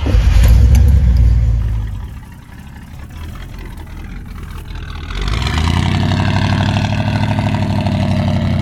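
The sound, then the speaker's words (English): A light green Chevy Chevelle's engine roars loudly in a parking lot, eases off for a few seconds, then revs back up into a strong, steady drone as the car pulls out and away. No one speaks. “Mel threw his backpack into the car and pulled out.”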